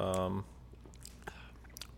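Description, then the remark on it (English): A sip of 130-proof bourbon over ice from a glass, with a brief louder tone at the start, then quiet slurping and a couple of faint ice clinks. “I'm going to take a sip.”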